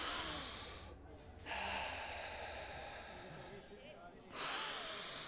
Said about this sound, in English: I started deep breathing and meditating.